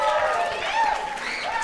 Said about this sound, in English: So can you guys give a big hand